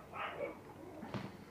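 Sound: dog barking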